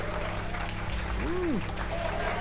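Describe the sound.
An audience applauds in a dense, steady wash of clapping that stays loud for the whole clip, with a voice briefly cheering in a rising-then-falling whoop over the noise.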